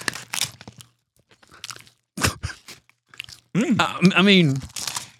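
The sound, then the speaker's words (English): Crisp, brittle crunching of edible paper packaging being bitten and chewed in short irregular bursts, followed by a voice making a drawn-out, wavering sound of reaction. “It smells like paper as well. Completely edible.”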